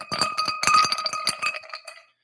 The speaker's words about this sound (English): I've been waiting so I could do a performative pour for you ASMR sickos. We have the usual ingredients, a glass with ice.